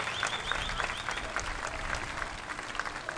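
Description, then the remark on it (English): Steady applause from a crowd, a dense, continuous patter of many hands clapping at an even level with no voices standing out. “Yes, a lot of applause because it's me.”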